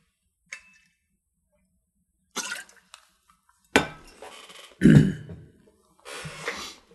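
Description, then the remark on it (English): Someone takes a drink of water: a light glassy clink, some shuffling, then a few short sipping and swallowing sounds, a throat clear and a breathy exhale, with no talking. “I'm going to take a drink of water before I begin to share here.”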